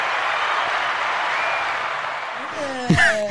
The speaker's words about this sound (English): please put your virtual hands together as we welcome back to the Special Chronicles show. The 2021 Duck Ambassador for the Chicago ChiDuckyDerby is with your virtual applause.